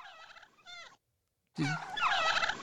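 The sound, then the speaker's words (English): A turkey gobbling sound effect: turkeys gobble in rapid, warbling bursts: two short calls, a brief silence, then a louder, longer gobbling chorus with no talking. “I brought sound effects for this special occasion.”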